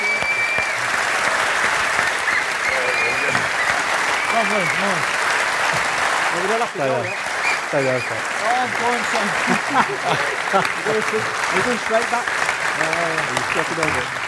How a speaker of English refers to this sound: It's just about all we've got time for tonight. Ladies and gentlemen, please give a big round of applause for our guests, Alex Rae, Dave Edwards and John Richards.